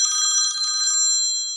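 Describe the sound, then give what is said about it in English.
A telephone's bell rings in one bright, rapid metallic trill lasting about a second, then hangs and fades out. It sounds fairly loud, with no voices. “I suppose we better answer, right?”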